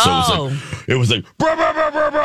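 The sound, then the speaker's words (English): A voice imitates a power plunger in the bathroom pipe, with strained, groaning vocal bursts, then a steady pulsing, harmonic drone that throbs in a regular rhythm for about a second. “Oh, that's a power plunger right there. Yeah. So that's probably a pretty good recreation there.”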